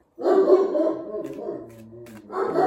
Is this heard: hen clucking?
no